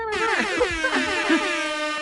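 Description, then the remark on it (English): A loud, blaring air horn blast kicks in abruptly and holds steady for a couple of seconds, its brassy harmonic tone wavering slightly like a party or DJ sound effect. “This is where I'm going to put in the DJ air horns.”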